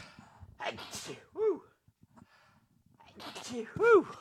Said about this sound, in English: Oh, big sneezes there. Sorry.